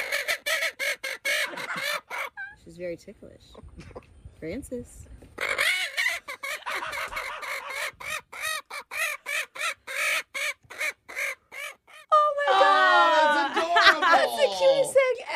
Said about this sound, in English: All right, let's listen to the 17-second clip of a woman tickling her chicken. You ever seen a chicken laugh? All right, you ready?